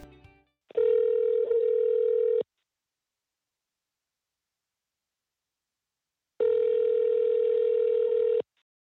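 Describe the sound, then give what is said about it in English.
A telephone line tone sounds twice, each a steady electronic buzz about two seconds long, separated by a long silence, as a call is placed to a guest from a studio near Joplin, Missouri. A brief voice fragment comes just before the first tone. “Well, let's see if we can get our guest on the phone.”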